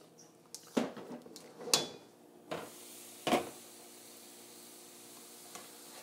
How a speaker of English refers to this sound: Then more of my onions and garlic, even though they're already in there. There we go. We're just steaming that real lightly.